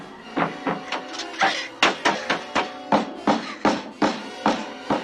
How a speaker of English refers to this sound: She knocks so hard that her hands bleed until the parents come home and let her out.